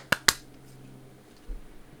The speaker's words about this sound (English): And clap sync. 3, 2, 1.